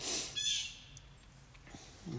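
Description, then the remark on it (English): Faint bird calls drift in, a few brief high chirps near the start over a low, quiet background hum. “The birds have come to hear the topic today, haven't they?”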